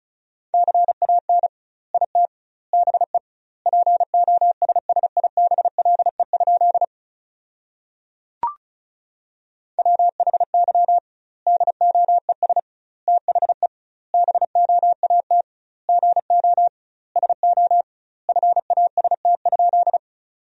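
Rapid Morse code at 35 words per minute with doubled word spacing, sent as a single steady mid-pitched tone, keyed in quick dots and dashes grouped into words, with one longer pause and a brief click midway. No voices.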